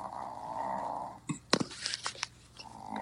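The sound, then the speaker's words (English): A dog makes a soft, snoring purr: a steady, breathy rumble that pauses for a moment of small clicks and rustles, then starts up again, quiet. “My dog's purring.”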